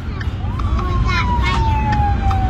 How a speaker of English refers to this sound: As they drive, you can hear the sirens all around.